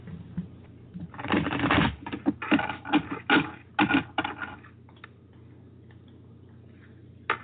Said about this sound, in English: The odd shape makes shuffling a little harder to get used to, but you can work it out